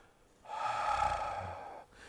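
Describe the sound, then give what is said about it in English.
A single long, breathy exhale pushed out by a person, lasting over a second with a rough, airy hiss before fading to quiet. “And they breathed out.”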